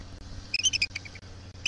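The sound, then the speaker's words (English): A female eagle called F-23, landed on the part of a nest called the attic high above Bayshore Road, calls out on a Thursday afternoon in a quick burst of thin, high-pitched chittering notes, followed a moment later by one more squeaky note, over a low, steady hum. “This was Thursday afternoon when an eagle with the rather clinical name of F-23 landed on what's called the attic and called out.”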